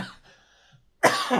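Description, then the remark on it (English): A faint, strained throaty sound fades into a brief silence, then a single loud, harsh post-flu cough, triggered by talking in certain voices, bursts out into the microphone and carries raggedly to the end. “Yeah, just I talk at certain points with certain voices, and it just triggers a fucking cough.”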